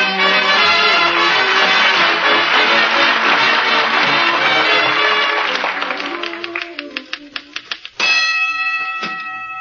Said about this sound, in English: Awful loud bell on that typewriter, dearie. Yeah. It used to belong to a sports writer. He used it at a prize fight.